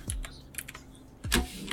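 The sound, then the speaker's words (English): Rapid clicking of keys on a computer keyboard as a woman types, a burst of several keystrokes followed by a pause and then another cluster, fairly quiet with no talking. “Oh, she's typing it.”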